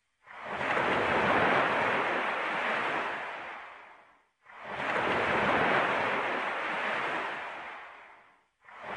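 Ocean waves break on the shore in the Santa Monica area in steady cycles, each a loud, hissing surge lasting about four seconds before a brief quiet pause and the next swell. No voices are present.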